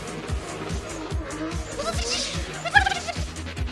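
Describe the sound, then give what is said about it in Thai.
A turbocharged car's blow-off valve gives a sharp airy hiss that bursts out midway through a music track driven by a steady pounding beat, followed by a brief squealing chirp, with a voice faintly in the mix. “เพลงนี้ถ้าคุณฟังดีๆนะมันจะมีซาวมันจะมีซาวของไอ้พวกโบออฟวาวของรถยนต์เทอร์โบด้วย”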